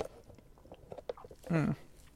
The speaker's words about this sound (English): I have a boba tea right here. I'm gonna take one sip.